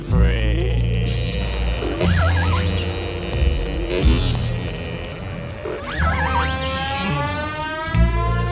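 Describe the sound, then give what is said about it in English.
An underwater whale call from whales around a ship: loud, warbling moans and rising, looping whistles with rich overtones, coming in bursts roughly every two seconds over a steady low droning rumble. “It's a funny noise, but it's a whale, all right.”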